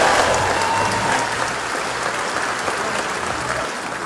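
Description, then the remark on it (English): An audience on the Greg in the Morning Buzz show claps when asked to clap if they have kids, a dense wash of many hands clapping at once, fairly loud and sustained throughout, with faint voices murmuring underneath. “How many people have kids? Clap if you have kids.”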